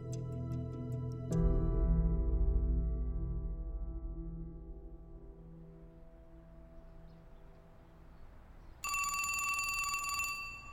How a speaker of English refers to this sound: When I was a kid, my parents taught me to answer the phone the same way most people learned. Phone rings, you pick it up, ask who's calling, then you take a message or you hand it to the person they want to talk to.